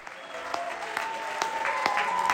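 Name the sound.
theatre audience applause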